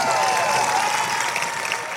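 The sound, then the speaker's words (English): A crowd at a show in a tent in the woods in Michigan applauds steadily for a man who talked with the host, a dense wash of many hands clapping at once, loud and sustained from start to finish, easing only slightly toward the end. “Give him a round of applause for talking to me.”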